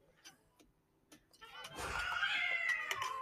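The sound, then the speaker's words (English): After a few faint taps, a cat lets out one long, loud, drawn-out meow that rises into a strained yowl, carrying to the end. “I don't know if you heard it, but there was a cat.”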